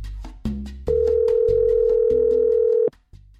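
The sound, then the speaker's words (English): A loud, steady telephone tone of an incoming phone call sounds for about two seconds and then cuts off abruptly, heard over a soft rhythmic music bed with a few short beeps before it. “Well, we've actually got a phone call from a Full Focus Planner user. So let's go to that now.”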